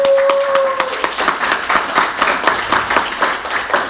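An audience at the close of an evening question-and-answer session bursts into a sustained round of applause, many hands clapping in a dense, steady patter, with a brief high whistle at the start.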